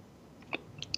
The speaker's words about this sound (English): Taking a sip.